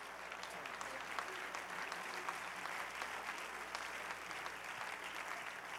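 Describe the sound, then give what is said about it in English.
A church audience claps their hands in praise to the Lord, sustained, dense applause, a steady wash of overlapping claps at even loudness for several seconds with no voices standing out. “Oh, clap your hands unto the Lord and give him praise.”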